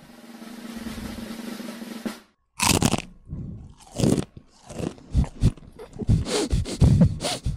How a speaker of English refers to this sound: Not bad. That was a good crunch. That was a good crunch. Not bad.